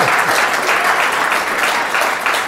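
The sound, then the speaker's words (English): An audience applauds loudly and steadily, a dense crackle of many hands clapping together that holds at an even level for a couple of seconds. “Yes, if he clap had for that, please.”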